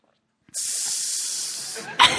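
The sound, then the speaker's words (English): A voice lets out a long, sustained hiss, like a snake, imitating a strange laugh; it runs steadily for over a second before a short burst of voice cuts in at the end. “That was a snake.”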